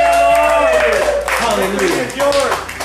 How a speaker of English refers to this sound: Happy are the people whose God is the Lord. If the Lord is your God, why don't you give him a hand clap?